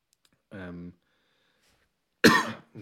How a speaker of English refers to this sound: always cough when I start these podcasts.